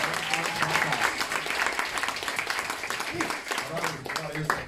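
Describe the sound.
An audience claps in a steady, dense round of applause lasting several seconds, with a few voices calling out underneath.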